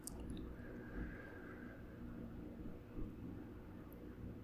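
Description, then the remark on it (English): Cars passing by in the middle distance as a steady, low rumbling wash of traffic noise, faint and continuous, with a few soft swells and no voices. “And then there are sounds from the middle distance, cars passing by, a plane passing overhead just this moment.”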